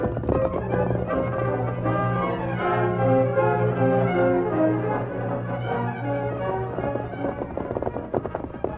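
Horses gallop along in a rapid clatter of hoofbeats, blended with a steady, swelling musical backing that stays fairly loud throughout.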